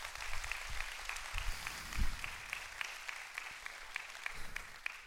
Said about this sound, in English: Come on, somebody give the Lord a hand clap of praise.